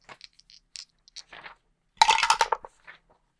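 Dice rattle and tumble across a table during a tabletop role-playing game: a few light, scattered clicks first, then a louder burst of clattering with a brief metallic ring that quickly dies away, the roll giving a 16. No one speaks.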